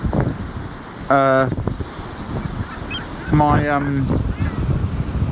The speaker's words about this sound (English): I'm down in Dover. I'm by the sea.